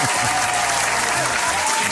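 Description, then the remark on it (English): A loud, steady round of applause from an audience, dense clapping that holds at an even level throughout with no voices breaking through. “Let's give Uncle Sid a round of applause there.”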